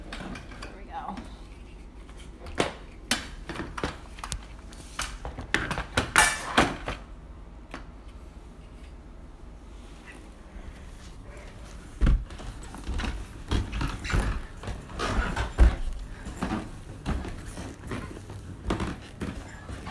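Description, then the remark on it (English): A gate, slid over so a dog cannot come up, slides shut with a series of irregular clacks and knocks, a cluster of rattling, scraping bangs partway through, then a few sharper metallic clunks as it settles. “I need to slide this this gate over so our dog doesn't come up because she's getting older and she can't really do it anymore.”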